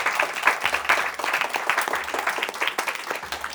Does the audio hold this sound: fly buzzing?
no